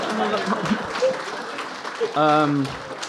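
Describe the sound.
Applause from an audience, a steady wash of clapping mixed with voices, and a brief sustained cheer-like tone partway through.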